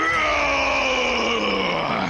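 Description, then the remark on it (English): A single sustained, guttural battle roar from a man's voice, voicing a warlord's roar, loud and strained, holding steady for about two seconds with a slight downward sag in pitch near the end. “He reaches down and lifts his mighty axe into the air and roars a warlord's roar.”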